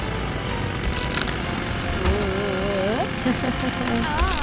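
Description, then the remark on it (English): A steady, rough mechanical roar of a transforming Super Truck's super drill breaking concrete for a rescue runs for the whole stretch, grinding and rattling, with rising, wavering tones sliding over it in the second half. “First, we need to break the concrete. Scout, activate the super drill.”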